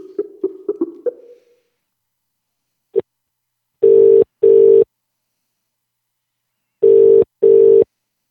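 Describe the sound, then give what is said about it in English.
A telephone rings in a double-burst pattern: two pairs of loud, buzzy rings separated by a pause, preceded by a brief fluttering rattle and a single click. “Can't you hear the phone? If it's ringing, you know.”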